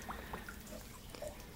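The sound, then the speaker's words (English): Water drips softly into a bath, a few scattered plinks landing at irregular intervals over a low, steady hush, with no voices present. “Is the water to your liking, dear? I can have the slave bring more hot.”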